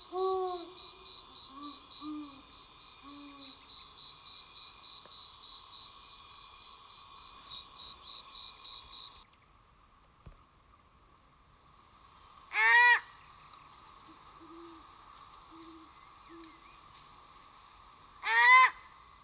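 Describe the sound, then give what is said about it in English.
A mating pair of owls call back and forth at night in a courtship duet, the female starting and the male responding, with a few distinct hoots and a higher wavering call, over a steady chorus of crickets and insects. “So let's listen to an actual mating pair instead of my poor imitations. First, the female will start, and then the male will respond, beginning their courtship.”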